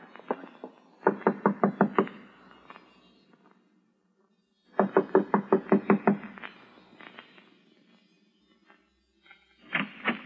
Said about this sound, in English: I'm going to knock on the door now and keep smiling to show we're friendly and let me do all the talking.